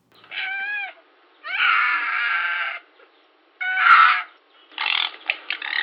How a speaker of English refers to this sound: The happy noise of foxes is a horrible screaming sound. Like this. This is what the fox says.